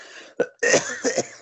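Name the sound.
cough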